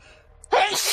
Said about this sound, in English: Bless you. Bless you. A new monster is appearing from the abyss. They're the sneezes.